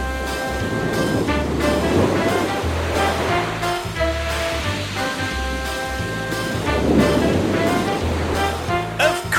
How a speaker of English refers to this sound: It was the sound of waves breaking on the beach.